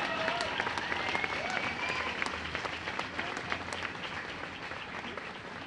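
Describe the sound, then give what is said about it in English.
A crowd claps steadily for several seconds to welcome two speakers at a gathering on the lands of the Wurundjeri and Bunurong peoples of the Kulin Nation, a dense wash of many hands with scattered sharper claps standing out, loud and sustained, fading only slightly toward the end. “Big round of applause”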